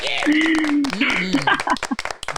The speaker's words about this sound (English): Full applause. Yes, we love it.